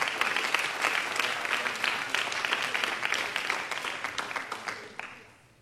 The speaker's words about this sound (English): Everybody said in Jesus' name. And why don't you give a hand clap to the Lord before you're seated.